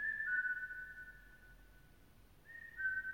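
A person whistles two sustained, steady notes while breathing, the first held for about two seconds and the second after a brief pause, fairly quiet with faint breathy noise beneath.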